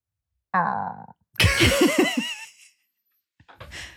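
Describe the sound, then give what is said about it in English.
A voice imitates the honking horn of a squeezed little pig toy: a short nasal buzzing tone, then a louder, wavering, strained honk that warbles up and down, followed by a brief breathy rasp. “those toys like the little pig that you squeeze and it has like a weird horn sound”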